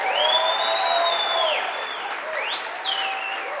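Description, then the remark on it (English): An audience claps loudly and steadily for several seconds, a clap of celebration given to the Lord, the dense applause joined by high, drawn-out cheering voices rising and falling above it. “Give the Lord a clap of celebration.”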